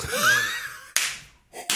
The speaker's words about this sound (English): I didn't mean to clap.